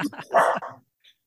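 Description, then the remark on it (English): A dog barks in a short, loud burst, a few quick yaps running into one longer bark before it falls quiet, with a faint high chirp afterward. “Oh, we have a dog that's joining us.”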